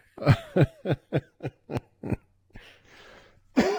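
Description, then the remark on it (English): A fairly loud coughing fit: about seven quick harsh coughs in a steady rhythm, followed by raspy, breathy wheezing and one more cough at the end. “Well, that made me cough.”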